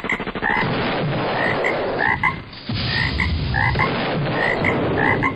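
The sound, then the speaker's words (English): Loud frog croaking repeats in quick rhythmic bursts over a dense, steady chorus of background calls, continuing throughout with a brief dip midway and no talking. “Guys, do you hear something? Do you hear? Is that a frog?”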